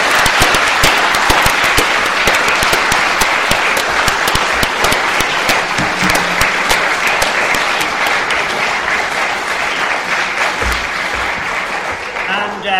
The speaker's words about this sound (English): Dignify him with a round of applause